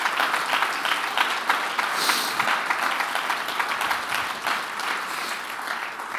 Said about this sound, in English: I think you ought to clap your hands and thank God for His will.